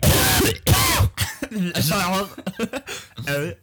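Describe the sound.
A person coughs twice in quick, harsh bursts, followed by a few seconds of voiced, talk-like sounds.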